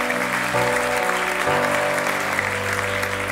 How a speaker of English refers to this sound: And come on, let's give our Teen Challenge lads a big clap. Amazing.